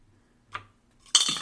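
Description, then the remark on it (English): A twenty-sided die clacks once, then tumbles in a bright, rattling clatter across a hard tabletop, brief, with no voices. “Roll a d20 for me.”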